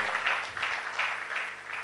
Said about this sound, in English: Another round of applause for...